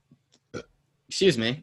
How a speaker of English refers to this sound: Sorry about the burp.